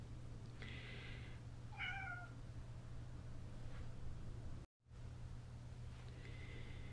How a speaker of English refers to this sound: You may hear during this segment and others a cat meowing. That is my kitty Lestie. And sometimes she likes to come and talk to me. And I try to keep her quiet. That's her in the background there.